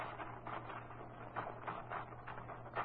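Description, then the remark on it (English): Irregular clacks of typewriter keys tapping at an uneven pace, fairly soft, with a steady low hum running underneath and no voices. “You want to use my typewriter. Sure, I'll put some paper in it for you.”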